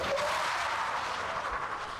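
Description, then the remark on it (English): A pickup truck speeding down a dirt road screeches to a stop in front of a shop in a harsh, steady hissing skid that holds for about two seconds, with no voices over it. “truck came speeding down the dirt road and screeched to a stop in front of the shop.”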